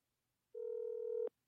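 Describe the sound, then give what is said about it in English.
A telephone being dialed for a Phone a Friend call on the game show Who Wants to Be a Millionaire: one steady electronic tone holds for under a second, clear, then cuts off abruptly with a click. No one speaks. “who are you going to dial? Should I call Jason? Yes. Okay. I'm going to phone a friend.”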